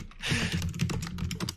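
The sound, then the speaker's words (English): Rapid typing on a computer keyboard, a steady run of crisp key clicks with a low hum underneath and no voices. “I even cut out a lot of the typing sounds and it still lasted for a while.”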